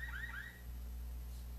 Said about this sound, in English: What the heck? That sounded like the car was like, somebody's car got hit over there. Hit? So one ball, one strike count. Did you say hit? Yeah, that's what the sound effect was the car alarm going off.